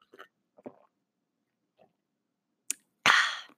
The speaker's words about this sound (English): Hold on. I'm going to take a coffee sip.